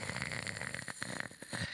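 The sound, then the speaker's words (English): Heavy, wheezy breathing, a continuous raspy rush of air with a thin whistling tone running through it, and no talking. “And I'm breathing like that right now.”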